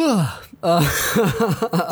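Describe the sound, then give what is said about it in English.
A loud, breathy yawn right into a microphone, its voiced pitch sliding downward, followed after a brief pause by several shorter rising-and-falling groaning vocal sounds, with no words spoken. “yawning right into the mic.”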